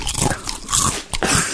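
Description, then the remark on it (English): Loud crunching of crisps being chewed, a rapid run of crackly bites with a short pause near the end before another crunch. No one speaks. “That was a powerful crunch mark, isn't it?”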